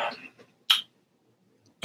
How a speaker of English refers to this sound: Oh yeah, he just drank the entire thing, ladies and gentlemen. Oh, okay, now we have the coughing. There it is.